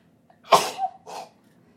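A single sneeze: a sharp, breathy burst followed by a softer second puff, then quiet. No talking.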